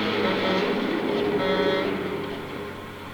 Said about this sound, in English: You got a U-Haul honking at you.